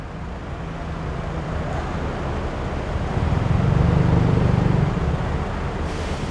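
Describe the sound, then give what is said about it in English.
A steady roar of busy city traffic by the elevated BTS SkyTrain station in Bangkok, Thailand, with low engine hum that swells louder midway as vehicles pass, then eases slightly; no voices stand out. “Bangkok's metro area is home to almost 15 million people, and as you can hear, it's also quite busy around this BTS SkyTrain station.”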